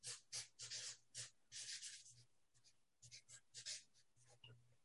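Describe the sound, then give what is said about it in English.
A pen scratches across a board in quick, irregular strokes as a model is written out, a run of short raspy bursts with brief pauses between them, moderately loud and otherwise alone. “I don't know who can actually see this, like if you're listening on your phones or whatever, but I like to write out the model.”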